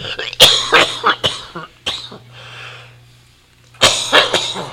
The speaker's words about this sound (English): This is good broadcasting, right? You know, this is real entertainment when you can hear the host cough.